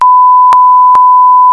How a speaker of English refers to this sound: and everybody except for me has had to be beeped this episode.